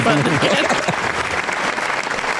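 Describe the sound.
Steady, dense, fairly loud applause for a first Florida Man win fills the whole stretch, with a voice briefly audible over the clapping at the start.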